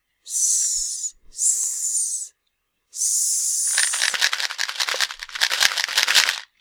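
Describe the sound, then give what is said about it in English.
A voice imitates a rattlesnake in an animal-sound guessing game: two short breathy hisses, then a longer hiss that turns into a rapid, dry, clicking rattle lasting a few seconds. “A leaky tire and a box of Tic Tacs. So a rattlesnake. Rattlesnake is correct.”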